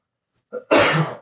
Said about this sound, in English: Hold on, I got a cough.